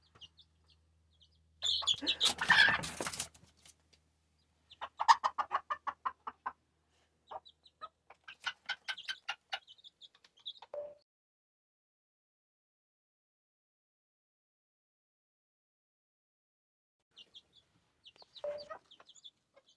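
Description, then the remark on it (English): A hen with her chicks clucks in short, rapid bursts as they scare a cat away, a loud agitated flurry at first, then broken runs of clucks separated by pauses, with faint thin peeping calls of the chicks near the end. “The hen and her chicks just scared the cat away from bull.”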